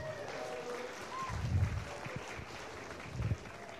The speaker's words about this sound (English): So please give him a very, very loud clap.